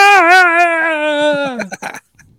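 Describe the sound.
A person voices a loud, wordless anguished cry, imitating a woman crying out in anguish, likened to the screaming goats from Thor: a strained bleating wail held for about a second and a half, then breaking into a few short ragged gasps before silence.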